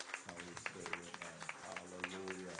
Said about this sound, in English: Give God a big clap offering. Vamos a dar un aplauso a Dios.